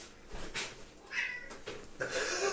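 A pet cat meows two or three times in quick succession at home, drawn-out, its cries rising over a faint background hiss with no one talking.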